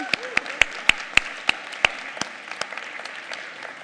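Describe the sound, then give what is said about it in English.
Audience applause for three people who have just been baptized, heard as a run of sharp, distinct claps at a steady pace that soon thins into softer, scattered claps before fading out. “I think it'd be good for us to just give another round of applause for our three people who have been baptized.”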